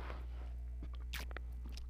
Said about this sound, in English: I'm obsessed with my notebook, guys. I just can't shut up about it. It's so crunchy, and it got wet the other day, and then it dried. I'm like, the pages are crunchy now.